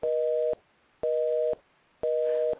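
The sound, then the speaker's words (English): A telephone busy signal: three evenly spaced dual-tone beeps, each about half a second long with equal silences between, heard clearly and alone over a phone line. “Oh, it's busy now.”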